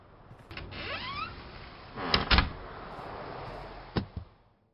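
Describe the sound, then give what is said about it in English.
A door creaks with a rising, drawn-out squeal, followed by a couple of solid knocks and a final clunk as it shuts behind someone coming in. Fairly quiet, with no voices. “Well, then come in properly and close the fucking door.”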